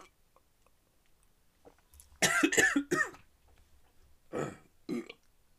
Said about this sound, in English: Ooh, that was gross. I had like a hiccup as I drank, and I totally inhaled half of that.